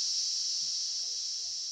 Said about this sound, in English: I'm just hearing that horrible scream of your best friend's the cicada. It is quite loud. It's impressive how loud they are compared to their size. I mean, the quantity of them definitely does the job.